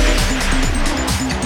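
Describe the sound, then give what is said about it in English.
Laser cannons on a ship firing in a rapid, loud volley: a string of quick sweeping zaps repeating every third of a second or so over a dense, roaring noise bed, without any talking. “Kathleen, I didn't know we had laser cannons on this ship.”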